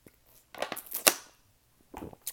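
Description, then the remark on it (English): A quiet sip of water: a few soft slurping bursts, then a sharp wet click as the mouth lets go, followed by a brief pause and a last faint swallow. “That right there was the last sip of water that I have drank, because I have talked for an hour and 16 minutes on this podcast”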